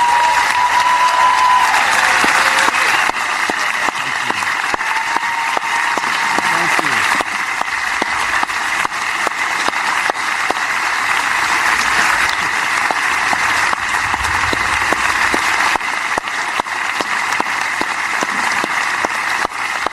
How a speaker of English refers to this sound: I thought we should hear that applause in full because he deserves it.